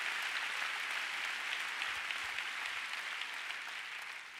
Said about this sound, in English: Will you help me just give God a big hand? Come on, let's give the Lord a big hand. Give Father God a big clap.